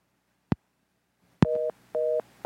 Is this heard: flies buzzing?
no